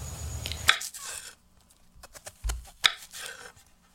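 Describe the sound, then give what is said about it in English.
A knife chops cold butter into small cubes on a wooden cutting board on a kitchen countertop, two sharp knocks about two seconds apart with softer scraping and dull thuds between them. No one speaks. “I would chop the cold butter into small cubes.”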